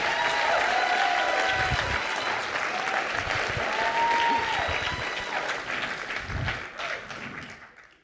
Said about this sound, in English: When God has ordained 2019 to be brilliant still, 2020 to be brilliant still, 2021 to be brilliant still, somebody clap your hands like you're still gonna walk in brilliance. Come on, clap. Bring some energy out of me today.